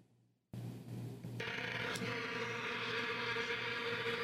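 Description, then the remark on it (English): A loud, continuous drone of vuvuzela horns starts abruptly and holds steady, thickening into a dense, buzzing wall of sound like many horns blaring together in a crowd. “Vuvuzela. That was what it's called.”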